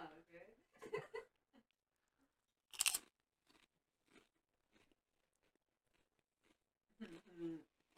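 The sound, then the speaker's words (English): Crunching of Lay's fries and gravy potato chips chewed into a microphone: one loud, sharp crunch followed by several softer, scattered chewing crackles. Voices talk briefly at the start and again near the end. “Alright, same time, busting or not, Lay's, fries and gravy. Wanna chew it?”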